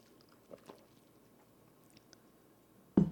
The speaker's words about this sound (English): Woo. Take a sip.